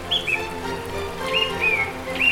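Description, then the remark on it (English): Short, high bird chirps come in a few quick pairs over a steady, soft rush of a babbling brook running through a quiet valley, with the calls sounding clear above the background. “And only the sound of the occasional bird. Tweet, tweet.”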